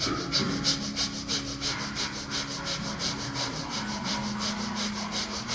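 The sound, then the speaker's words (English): Rapid, rhythmic panting breaths of the yoga breath of fire, panting like a dog with the tongue out, about three per second, each a short airy hiss, continuing at a steady pace throughout with a faint low hum underneath and no talking. “stick your tongue out, begin panting like a dog, or breath of fire.”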